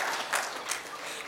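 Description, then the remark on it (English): An audience applauds one another for being there, a steady wash of many hands clapping at once, dense and even with slight swells, moderately loud and with no voices above it. “And give your neighbor a hand for being here.”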